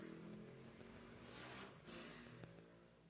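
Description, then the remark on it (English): Motorbike engines rev outside, a continuous droning roar with rising and falling pitch, moderately loud and steady over a few seconds with no talking. “The motorbike boys.”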